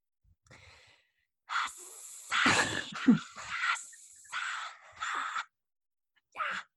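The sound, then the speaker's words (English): A voice makes a string of breathy, hissing bursts and heavy exhalations imitating Parseltongue, snake language, with a brief pause before a final short hiss. “So if anybody understood that, you are a true Slytherin because that was parcel tongue.”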